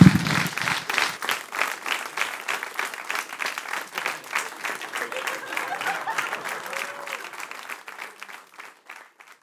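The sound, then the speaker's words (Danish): An audience applauds steadily, a dense patter of many hands clapping that holds for several seconds before gradually thinning and fading out. “Og så klapper I.”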